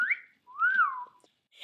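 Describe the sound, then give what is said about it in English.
Two drawn-out human whistles, the second a long rising-then-falling glide, imitating the eerie call of a lechuza owl, clear with brief breathy noise at the end. “I love that she whistles.”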